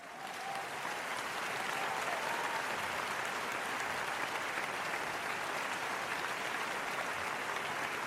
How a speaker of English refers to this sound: So I want to give a round of applause to them.